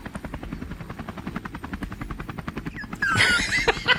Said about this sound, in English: Let me turn off the helicopter.